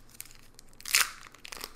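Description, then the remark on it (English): A foil trading card pack being torn open, a few soft crinkles building to one sharp, bright rip near the middle, then scattered papery crackles trailing off, with no one speaking. “I'm opening my pack.”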